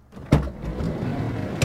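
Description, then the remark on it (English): A door is opened to let a guest in, with a sharp clunk, then a low rumbling drag as it swings, ending in a second knock about a second later. Moderately loud, with no voices. “open the door. Let our special guest in.”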